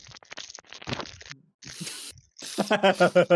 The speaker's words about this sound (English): Just hear it as it's coming up to the mic, just crumple.